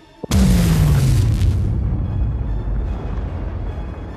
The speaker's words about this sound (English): you two are blasted back as an explosion echoes out, tearing up chunks of concrete, whole trees, and a whole half of one wing of Salem's Lodge. The Warden and Weaver are both blasted back, crashing into the torn-up ground.